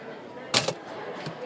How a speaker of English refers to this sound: Now back to the typing.